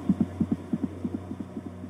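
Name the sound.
irregular heartbeat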